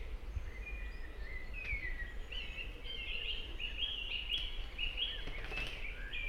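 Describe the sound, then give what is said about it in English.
A bird sings a flowing string of clear, flute-like whistled notes, rising and falling steadily throughout, set against a soft outdoor hiss with no one talking. “Listen to that bird. It sounds almost flute-like.”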